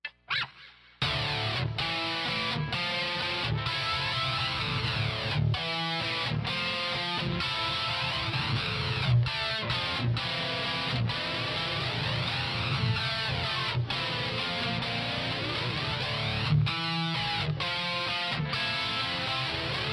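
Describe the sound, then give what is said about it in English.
Electric guitar through a flanger with a built-in delay, its tone whooshing up and down in slow waves as sustained chords ring out loudly, broken by brief rhythmic cutoffs, with an echoing finger slide at the start, and no voices. “a lot of flangers have like a delay built in, and I just happen to like the way this one sounds”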